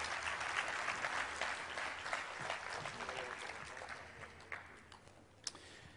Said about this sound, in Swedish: Ah, underbart, en applåd.